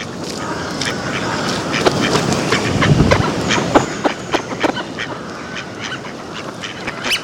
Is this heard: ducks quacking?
yes